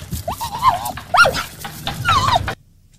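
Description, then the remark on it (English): A recorded dog vocalizes in three quick, pitched bursts of yelping barks and whines, fairly loud over a faint background hum, then the playback cuts off abruptly into near silence. “Well, anyway, but you were playing the sound of a dog.”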